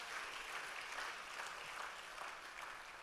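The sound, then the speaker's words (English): An audience claps their hands together, a dense, steady wash of applause that keeps an even loudness for about three seconds with no voices standing out. “If you believe that, clap your hands, that he is sovereign God.”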